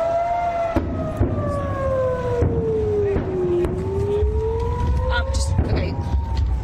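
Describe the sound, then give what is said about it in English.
A wailing rocket warning air raid siren drones steadily as Hamas fires rockets amid airstrikes and artillery fire in the Israel-Gaza conflict, its pitch sliding slowly down and then back up over a rumbling, noisy outdoor background with some muffled voices. “You hear these sirens?”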